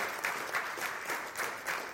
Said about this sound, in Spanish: ¿Usted le puede dar un aplauso al Señor en esta mañana? Gloria a Dios.